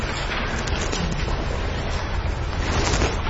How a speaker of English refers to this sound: I hear everybody rustling their papers.